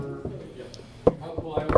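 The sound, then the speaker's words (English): Several sharp knocks on a house's back door, one early and then a quicker uneven cluster near the end, fairly loud and thumping, with a voice murmuring underneath. “Okay, so I hop over that easily, and I come, and I'm knocking on his back door.”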